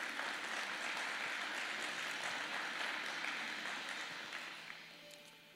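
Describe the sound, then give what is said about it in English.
A crowd applauds a leadership team at All Seasons, a dense wash of many hands clapping at an even level before gradually thinning and fading toward the end. No one speaks. “And I just like to everybody give applause for them, the leadership team, and everything they've been doing for All Seasons.”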